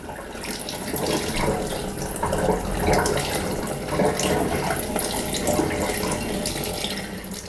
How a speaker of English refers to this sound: Hang on, let me move the other orchids out of the way of the tap. And I'm literally going to turn the tap on and start looking at the clock. And I'm going to give this about 30 to 60 seconds running water through.